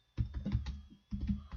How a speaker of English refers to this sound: I'm just quickly typing in here.